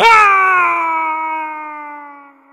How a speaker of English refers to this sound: screamed as he and his llama plummeted hundreds of feet, getting whacked here and there by branches and passing birds, until they landed with a loud splash in the river below.